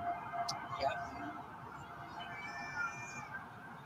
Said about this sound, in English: That is the ESU units. The ESU units have the whoops whoops just like the ambulances do. That's a lot of fucking cops.